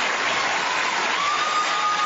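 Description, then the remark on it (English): Steady, dense applause from a Hollywood audience fills the whole stretch, a continuous wash of many hands clapping at an even, fairly loud level with no voices breaking through. “This is Hollywood applauding Hollywood.”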